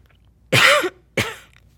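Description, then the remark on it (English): Two forceful coughs, a longer harsh one followed by a shorter one after a brief pause, with no talking around them. “When next he felt a cough attack, instead of spraying Jill and Jack, he kept those germs down in his shirt”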